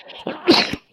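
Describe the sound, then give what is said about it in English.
A single sharp sneeze bursts out loudly, with a brief intake before it and a quick trailing tail afterward. “Bless you. Excuse me.”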